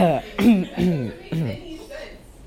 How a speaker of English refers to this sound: I'm clearing my throat.